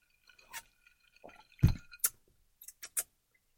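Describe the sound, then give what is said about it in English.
A gin cocktail of cranberry pomegranate tea, elderflower cordial, lime juice and gin swirled in a glass, with short sloshes of liquid and a few light clinks scattered over a few seconds, one fuller thud in the middle, no voices. “And I'm going to spin it up because I don't want to just get a mouthful of gin.”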